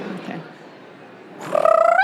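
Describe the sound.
After a quiet pause, a person mimics a lemur call with one loud, drawn-out nasal wail that wavers slightly and rises toward the end.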